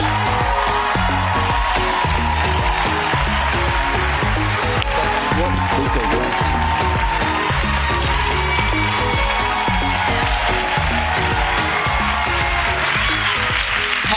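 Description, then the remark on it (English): The Daily Show studio audience claps steadily for about fourteen seconds to welcome guest Domonique Foxworth, former NFL player and NFL Players Association president, a dense, loud wash of hand claps holding an even level, with a faint murmur of voices mixed in. “They don't know who I am, but they're clapping for me anyway.”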